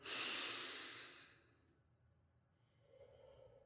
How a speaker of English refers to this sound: And since I'm wearing inhale, exhale, sure, let's just take a deep breath all in before we start the show, yeah?